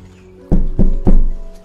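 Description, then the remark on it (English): Three firm, evenly spaced knocks on a door, heavy and low-pitched, with no voices. “I recognize that knock anywhere. I go open the door.”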